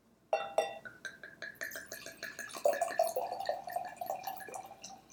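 A bottle of Bordeaux wine is opened and poured: a sharp clink at the start, then a steady run of quick glugging pulses over a ringing tone that rises as the glass fills, with no talking.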